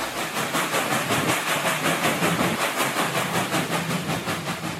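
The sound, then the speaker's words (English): A train roars steadily along the tracks, loud, with a broad rushing hiss and a rapid rhythmic clatter of wheels pulsing throughout. No one speaks. “She reached out with her claws as the sound of the train roared below them.”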